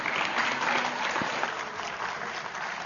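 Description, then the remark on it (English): An audience on graduation Sunday claps steadily for the youth leader who is preaching, a dense, even wash of many hands that holds at a fairly loud level for about three seconds, with no voices standing out. “He's also our resident Washington Redskin, so you can boo him or clap for him right now.”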